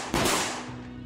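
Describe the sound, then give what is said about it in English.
Two sharp, loud gunshots fire in rapid succession, followed by a fading echo that trails off with no one speaking; shots at a man as he opens a house's garage door. “open the garage door, followed immediately by two gunshots.”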